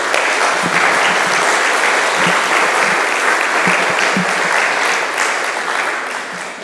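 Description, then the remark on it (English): Sustained audience applause welcoming the next speaker after a prayer, a dense crackle of many hands clapping steadily at full strength, tapering slightly toward the end. No one speaks over it. “It's always a little bit dangerous to clap before someone does something.”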